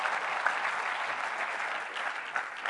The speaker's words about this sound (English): And through your generosity and the generosity of others, we were able to pay for 140 kids to go to school this year. And as I talked with... Yeah, you can clap for that.